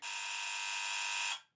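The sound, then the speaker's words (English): A doorbell rings on a Saturday as one loud, harsh, steady buzz that holds for just over a second and then cuts off abruptly, with no talking. “Gonna have words with whatever asshole goes around ringing doorbells on a Saturday.”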